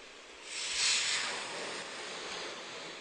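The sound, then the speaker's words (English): A cartoon balloon deflating: a breathy, airy hiss of escaping air swells up after a brief quiet start, peaks, then streams on steadily at a moderate level with no voices. “Now it's deflating.”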